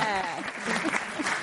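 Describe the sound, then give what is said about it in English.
An audience applauds with dense, steady clapping that keeps an even loudness throughout, with some faint voices mixed into the noise. “Yes, let's give a hand for that. Deserves an applause.”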